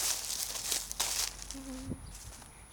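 Footsteps crunch through dry leaves in a few loud, crackly bursts as someone walks a lap outdoors on a windy day, then fade to softer rustling. A brief tonal chirp sounds midway. No one speaks.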